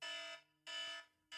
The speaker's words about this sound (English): Oh, look at that. We made it under time. I was just going to try and think of the next question and the alarm beat me to it.